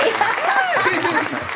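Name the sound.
applause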